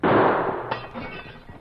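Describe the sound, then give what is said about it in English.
Two sharp gunshots ring out, the first loud and booming with a long decaying tail, the second slightly softer and followed by a brief rattling, clattering noise as the shot hits some bottles. No one speaks. “Give me my gun. I'll return that fire.”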